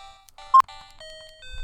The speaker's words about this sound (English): PA. Ding dong. Time's up. Your safari game is over. This battle is over.